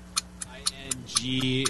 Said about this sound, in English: First question, are we going to have a clock this time? You betcha. Okay, fine. Guaranteed. Guaranteed clock.